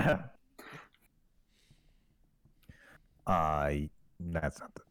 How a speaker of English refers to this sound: Yeah, she's coughing on smoke.